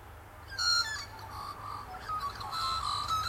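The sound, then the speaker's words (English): A pet bird calls with harsh, warbling squawks and chirps, moderately loud, repeating in uneven bursts over a low background hum. “You hear my bird up there?”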